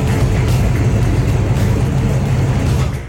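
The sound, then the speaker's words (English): A car engine rumbles steadily, a loud continuous low drone with a slight rhythmic throb, running for a few seconds without any talking. “And those car sounds were sent in by Cameron.”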